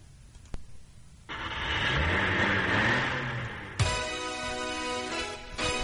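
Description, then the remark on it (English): A car engine rumbles and revs up over a steady wash of road noise, its pitch rising and falling, then shifts abruptly to a brighter, buzzing drone as it keeps driving. No one speaks. “You're driving in your car?”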